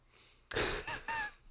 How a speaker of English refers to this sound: Got me coughing all over the place. Spreading germs.